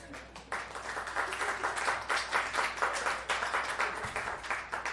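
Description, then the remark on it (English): An audience applauds in a steady, dense burst of clapping that holds at an even level for several seconds, with a few scattered voices mixed in. “It feels good when you clap.”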